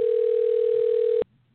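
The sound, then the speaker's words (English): A phone ringback tone on an outgoing call: one steady, slightly buzzy beep held for just over a second, then cut off abruptly into faint line hiss. No one speaks. “Do you hear the ringing?”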